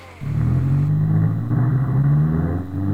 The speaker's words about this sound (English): Meanwhile, a gritty 90s action hero drifts across the street in a race car.